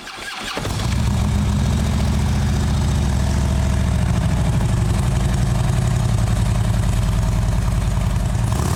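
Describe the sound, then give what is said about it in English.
After a brief moment of quiet, a Harley-Davidson motorcycle engine being tested at the powertrain operations plant where engines are assembled and tested fires up and settles into a loud, steady, rumbling run for several seconds with no one talking. “works in the division that assembles and tests the engines for Harley-Davidson motorcycles.”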